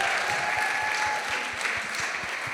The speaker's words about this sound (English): Guys, give yourselves a round of applause.